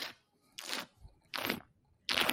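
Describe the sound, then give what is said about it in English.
Three loud, hissy slurps of wine taken right up against the microphone, each a short airy burst separated by brief pauses, with no talking. “Now we're getting slurping on Mike.”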